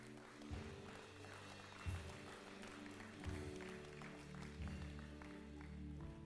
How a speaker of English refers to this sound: Give a hand clap to the Lord.